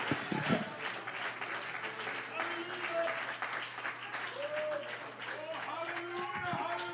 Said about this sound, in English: Would you clap your hands to the Lord and give the Lord some praise in this house tonight? Come on, praise the name of the Lord.